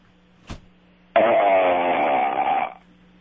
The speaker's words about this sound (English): I'm going to try to go with a burp. All right, here we go.